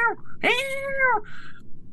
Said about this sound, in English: And we noticed that there was a pretty big brown cat that was up in a tree.